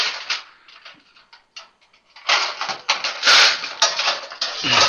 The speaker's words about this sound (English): Parchment paper, that's what we're going to pull out and put in this pan so we don't have to grease it. Parchment paper is so awesome. I will always have it available.